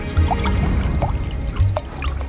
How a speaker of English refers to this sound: In the dining room, Theseus sat down to an elaborate feast and watched eagerly as Medea poured him a goblet of wine. When she filled the cup halfway, he frowned.